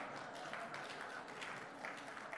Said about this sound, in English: Applause for her, not for me, please.